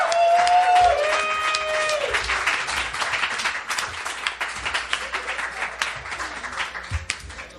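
An audience breaks into sustained applause for two debaters after a debate at a third anniversary show, dense clapping that starts loud and gradually thins out, with a few brief whoops and cheers rising above it early on.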